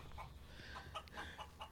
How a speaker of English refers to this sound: Sounds like you have enough chickens there. We definitely have enough chickens.